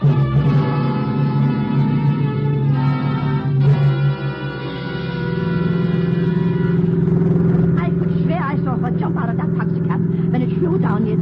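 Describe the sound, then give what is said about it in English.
A car engine drones steadily and loudly as the car is driven fast, its pitch shifting as it revs and speeds along, with a rattling clatter toward the end. “Come on, let's get down on you to the car, fast.”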